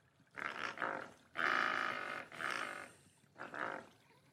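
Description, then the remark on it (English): A human voice imitates a pelican call with four harsh, throaty, growling bursts. The second is the longest and loudest, and there are short pauses between them. “That's meant to be a pelican.”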